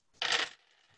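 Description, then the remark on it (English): A handful of 14 dice, rolled for a stamina roll, clatters briefly, a bright rattling burst of small hard objects tumbling together for about a third of a second before fading into quiet. “What are the chances I don't get on 14 dice at this point?”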